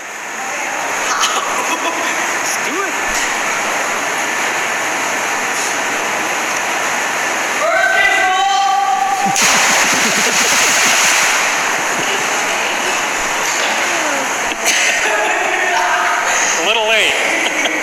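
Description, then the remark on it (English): A big splash into a hotel pool lands partway through, surrounded by echoing shouts and a lively crowd of voices, with steady rushing water noise throughout. “So right as that splashdown stopped, they walked out the door, and I think the hotel clerk, like, or the chick behind the counter heard it too.”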